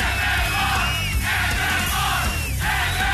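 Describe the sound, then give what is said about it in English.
A large crowd roars and yells without letup, a dense wall of cheering voices with shrill whistles and whoops rising above the din, steady and loud throughout. “Now that's what I call a crowd, ladies and gentlemen.”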